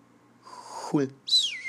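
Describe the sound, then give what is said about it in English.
A breathy, voiced swoop slides downward, then a bright, high teapot whistle rises sharply and glides slowly lower, fairly loud. “Teapot. Whistling.”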